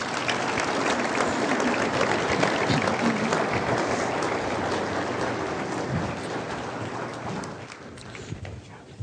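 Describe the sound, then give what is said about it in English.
An audience gives steady applause for guest speakers, a dense wash of many hands clapping at a fairly constant level before gradually thinning toward the end. “Can you guys give them a round of applause?”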